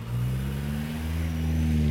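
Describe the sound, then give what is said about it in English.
A car engine revs steadily, a loud, sustained low hum holding its pitch with a slight rise toward the end, as the experimental Whiting Davis 6 car is towed away by a truck. Nobody speaks. “The experimental car was removed.”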